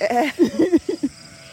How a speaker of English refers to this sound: Yes, those are sheep. Oh, they're coming. They're like running.